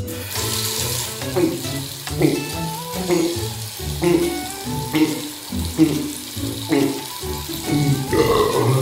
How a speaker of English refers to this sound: Turn on the faucet, please!